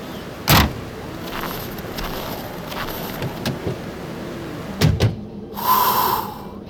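People climb into a car in freezing weather: a solid door thud early on, then two more door slams a few seconds later, followed by a brief mechanical whir, with no talking.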